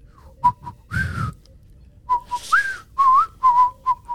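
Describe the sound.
Someone whistles a bouncy, jaunty melody in short clipped notes and a few sliding pitches, fairly loud, with brief breathy gaps between phrases and no talking.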